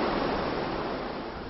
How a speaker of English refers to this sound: Wow, that was quite the rainy evening in Bangkok. That was a few weeks ago